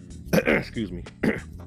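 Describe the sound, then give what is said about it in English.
A couple of rough coughs, the first a quick double burst and the second a single hack a moment later, sounding somewhat like throat clearing. “excuse the cough, but you hear about those things, on this podcast you're gonna hear a little coughing.”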